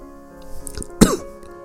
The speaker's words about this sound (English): Okay, that was a little bit of a cough there, as you guys have heard. I'll be the first to admit it. Yeah, I coughed. So sue me. I'm a coughing guy.